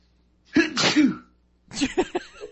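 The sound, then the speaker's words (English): A forceful sneeze bursts out, followed about a second later by a second, choppier burst of sneezing or sputtering, with quiet in between and no talking. “Bless you.”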